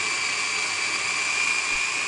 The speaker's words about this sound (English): I'm going to add more through the feeding tube as I get going, and this will puree it into a nice paste. And then I'm going to drizzle in some olive oil as it's processing.